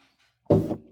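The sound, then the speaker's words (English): A single quick sip of apple cider, a short wet slurp that follows a moment of near silence and then fades. “Just a minute, one more sip of the old apple cider here.”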